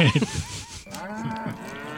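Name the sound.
cow mooing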